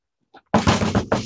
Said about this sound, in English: At the door, whatever time he decided it would be, we'd have to be up. At the door, knocking the door. Time to wake up!